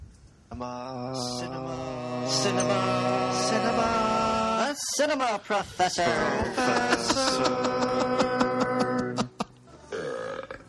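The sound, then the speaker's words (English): A person belches out words in long, drawn-out, guttural burps, loud, with a brief pause midway before more croaking burped syllables follow. “All those voices were the cinema professor himself. It was all me. For the burping.”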